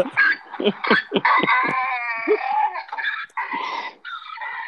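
A donkey bray sound effect plays on its own: a run of short, rasping gasps gives way to long, loud, wheezy harmonic hee-haw tones that rise and fall several times.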